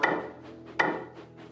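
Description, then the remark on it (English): Soft, hollow taps on wood at a slow, steady pace, about three in all, each with a brief ringing decay, coming from inside Thomas the engine's firebox, where a gingerbread train was placed to bake. No voices are heard. “Not long into his journey, there was a faint tap, tap, tapping.”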